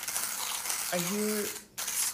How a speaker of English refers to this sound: Yeah, I was grinding beans. It was like a very soft sound, so... Well, I have a very good grinder from Europe.